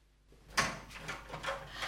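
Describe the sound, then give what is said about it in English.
A front door is opened: a sharp latch click, then a soft scraping, rustling sweep as it swings, all fairly quiet with no voices. “I'm going and opening the door.”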